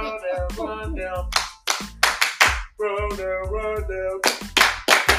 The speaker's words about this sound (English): All right. It's a cheer.